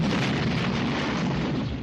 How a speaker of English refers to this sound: All I have to say is that explosion at the end of the trailer is my favorite part.